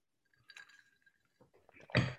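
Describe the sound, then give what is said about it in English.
Glasses clink together in a toast: a light ringing chime first, a few soft knocks, then a louder, sharper clink, with no talking. “So we always start with a cheer. Hopefully in the next 48 minutes, we'll finish at least two drinks. Cheers and happy Friday.”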